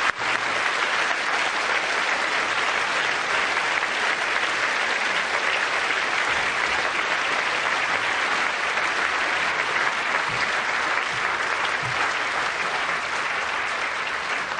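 An audience applauds steadily, a dense wash of many hands clapping at an even, loud level that holds throughout without fading or breaks for talk.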